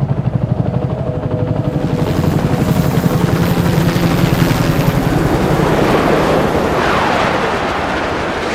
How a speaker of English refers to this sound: And they did, until the helicopters and fighter jets intercepted her, when she became entangled in the concrete interchange of the 110 and the 105.